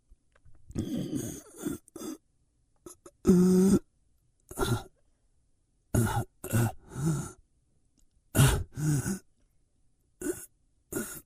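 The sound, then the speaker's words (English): Heavy breathing in a dozen or so loud, raspy bursts with short gaps between them, a few turning throaty and groan-like; no one speaks. “Okay, I hope that's enough breathing for you.”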